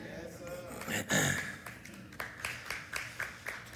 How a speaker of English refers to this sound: Thank you. Forced applause.